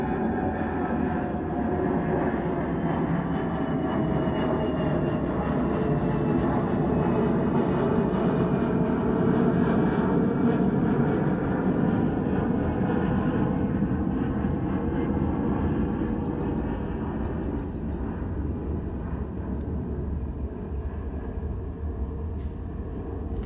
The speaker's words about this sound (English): There's an airplane.